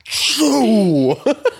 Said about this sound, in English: Is it sneezing really fucking loudly? Actually, yeah, we'll do that one first. Yeah, sneezing. Yeah, Why? The dad sneeze.